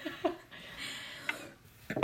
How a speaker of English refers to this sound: Great, now I coughed.